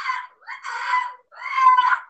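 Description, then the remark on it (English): A voice imitates a shrill, wavering bat screech as the bat falls to the ground, in three strained bursts over about two seconds, fairly loud, with short gaps between cries and no other talking. “The bat falls to the ground screeching.”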